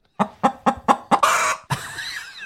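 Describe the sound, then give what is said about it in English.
A chicken sound effect: a chicken clucks in quick, evenly spaced bursts, then lets out a longer squawk and a trailing warble, loud with no one talking. “He loaded in a bunch of chicken sound.”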